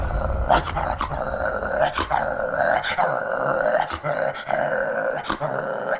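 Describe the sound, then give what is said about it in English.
Several dogs growl and snarl continuously, with sharp yips breaking through at irregular intervals, loud throughout without any speech. “The dogs. How could they get past the dogs?”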